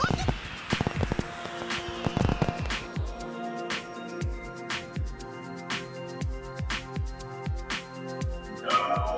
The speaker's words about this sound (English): It's the fireworks!